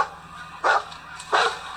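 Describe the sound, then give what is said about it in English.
A dog barks twice in a film scene, two short sharp woofs spaced about half a second apart, clear over a quiet, steady background hum. “Nice nod back to the first one with the dog.”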